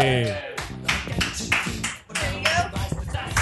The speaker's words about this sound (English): Thanks, ladies and gentlemen, a round of applause for the next champion,